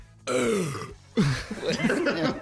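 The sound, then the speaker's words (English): Two loud burps in a row, the first a drawn-out croaking belch and the second a rougher, gurgling one that rumbles on, separated by a brief pause. “I worked really hard for that burp.”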